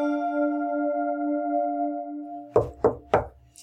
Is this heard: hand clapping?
no